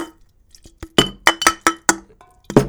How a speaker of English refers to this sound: Let's cheers these empty cans. Cheers them.